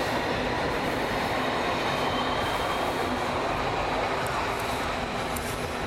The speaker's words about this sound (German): Kannst du leiser fahren, Zug?